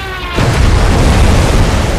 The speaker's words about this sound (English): Another Avenger runs into a steel wall, erupting in flame and smashing into the sea.